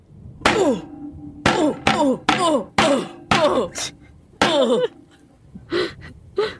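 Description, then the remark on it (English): Someone trips and tumbles down a flight of basement stairs: a string of about seven heavy, uneven thuds and bumps, each loud and sharp, mixed with strained gasps and grunts, ending in a few softer knocks. “As the stoner turned to shut the basement door behind them, they tripped and down the stairs they went.”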